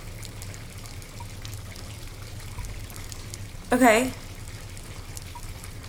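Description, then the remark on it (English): Water runs steadily in the background, a continuous hissing flow from a tap left on, with a person briefly speaking over it partway through. “We should really turn the water off.”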